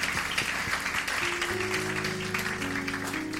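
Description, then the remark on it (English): A crowd claps steadily in a dense, continuous patter for a visiting man of God, and partway through sustained keyboard or organ notes begin to sound beneath the applause. “Just a round of applause for the man of God.”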